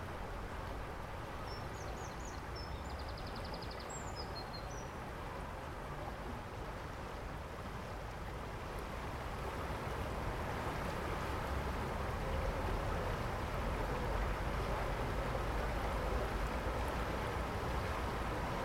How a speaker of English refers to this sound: It really is very pretty, and you relax to the sound of the water cascading over the rocks.